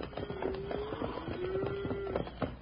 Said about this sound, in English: listen, ain't that cattle I hear? It sure is